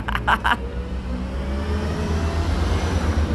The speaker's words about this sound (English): Fuck you, buses. I'm just kidding.